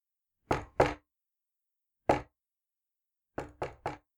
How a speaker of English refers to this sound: It says two knocks, and then a pause, and then a knock, and then a pause, and then three more knocks.